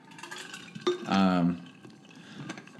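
A glass clinks once, followed by about half a second of a gulping, throaty swallow with a low, buzzing tone, then soft background noise.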